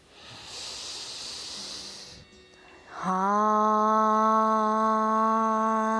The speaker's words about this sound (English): The mantra is HAM, breathing in. HAM. Breathing in deeply.